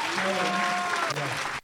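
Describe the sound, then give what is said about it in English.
An audience applauds in honour of men of an older generation, a dense, steady burst of clapping, loud and continuous, with a few voices calling out over it before it cuts off abruptly. “Let's just applaud these men.”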